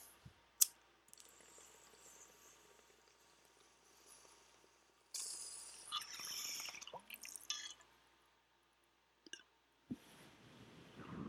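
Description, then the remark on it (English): Watery gurgling of a bong being hit, a bubbling burst lasting a couple of seconds, with a few sharp clicks before and after and no talking. “Typically I edit how long I like hit the bowl.”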